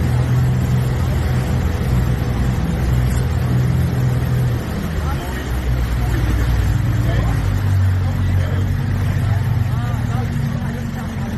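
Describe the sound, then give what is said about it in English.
A motorboat engine drones steadily on Monkey River, its low rumble dropping in pitch partway through as the boat eases off and slows, with wind and water noise over it. “Boat's slowing down.”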